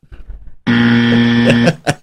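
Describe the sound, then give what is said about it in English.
A single loud, harsh electronic buzzer blares steadily for about a second, thick with stacked overtones, then cuts off. A few short clicks and thumps come before and after. “We're going to go for a record number of buzzes.”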